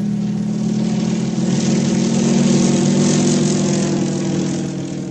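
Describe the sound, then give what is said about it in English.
A propeller aircraft engine drones steadily and loudly, a continuous low hum with a whirring buzz that swells slightly in the middle before easing off, with no voices. “In the air.”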